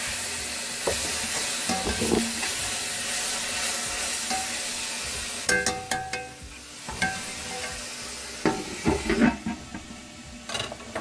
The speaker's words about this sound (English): And then I steam it with the soy sauce. Steam it with the soy sauce. Steaming it.